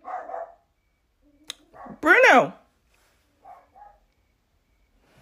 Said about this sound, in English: The both the dogs are barking.